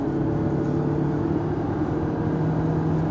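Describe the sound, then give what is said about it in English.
A steady, loud drone of a car accelerating up to 70 on a highway, with a low engine hum and continuous road and wind noise throughout. No one speaks. “So I get it up to 70.”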